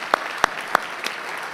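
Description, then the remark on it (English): An audience applauding people serving in the armed services, a steady crackling wash of many hands with a few sharper, louder claps popping out at regular intervals; no one speaks. “Give them one more hand, please, before they sit down.”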